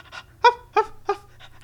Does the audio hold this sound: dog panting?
yes